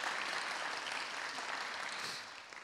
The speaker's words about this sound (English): And maybe if we want to just clap our hands for them, just to say thanks very much for everything.